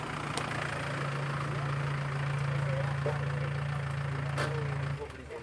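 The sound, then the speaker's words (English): An ambulance at a motorsport event idles with a steady, low droning hum that holds evenly for about five seconds, then cuts out, over a constant wash of background noise with a few faint clicks. “There's the ambulance.”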